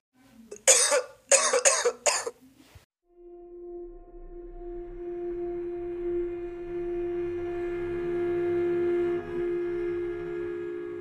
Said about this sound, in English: The infected ones went wild, and instead of sneezing, they began to cough.